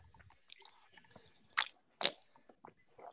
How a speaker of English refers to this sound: I've been sipping that Addictivo Extra Añejo. That stuff is amazing.